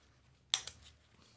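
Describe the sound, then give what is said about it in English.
A metal watch buckle prying at a bottle cap: two quick, sharp metallic clicks, the first louder, then a faint scrape as it slips off. No one speaks. “I may have broke the buckle.”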